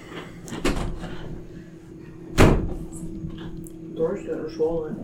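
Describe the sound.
A door swings shut with a single solid thud, preceded by a brief rattle of the handle, while a voice murmurs faintly afterward.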